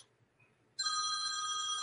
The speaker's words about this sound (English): Oops, somebody's phone's going off. Yeah, it's me. Excuse me for one second.